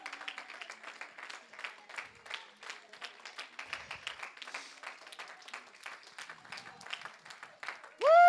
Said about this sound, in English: Keep on clapping. Come on, keep on giving him some praise right now.